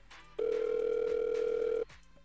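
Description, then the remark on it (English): A steady telephone dial tone, heard while placing a call to an interview guest, hums loud and clear for about a second and a half, cutting in and out abruptly against a quiet background. “We're about to call on the phone line.”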